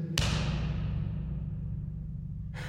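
A single hard, sharp slap of a hand against a chest rings out, followed by a long echoing decay that fades over about two seconds above a steady low hum; no one speaks.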